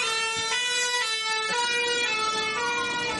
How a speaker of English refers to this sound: Okay. There's a fire truck going out. They've heard there's a fire starting.